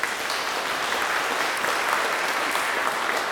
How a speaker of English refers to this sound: Look, you didn't have to clap, but thank you for not booing. I appreciate that a lot.